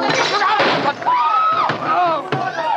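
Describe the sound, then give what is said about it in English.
A heavy crash of a table going over, then a sharp revolver shot cracks out as the gun goes off when the shooter's hand is knocked, loud, with strained shouting voices over the commotion. “No, he knocked my hand. The revolver went off.”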